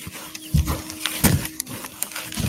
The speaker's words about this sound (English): And to the more trained ears, it sounds like he's rubbing something on the tree bark.